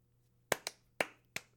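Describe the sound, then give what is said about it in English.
A single person claps five times as a round of applause for Grape-Nuts cereal, in a quick, slightly uneven rhythm, each clap sharp and crisp against an otherwise quiet background. “That's my round of applause for grape nuts.”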